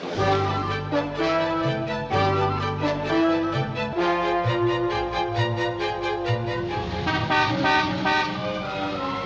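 Busy street traffic in America among many cars and stone buildings, with a steady chorus of car horns honking and blaring over one another, loud and continuous throughout, with no voices heard.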